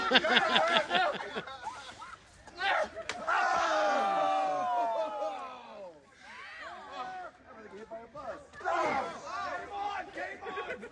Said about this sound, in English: But they're just fighting in Santa Monica Boulevard.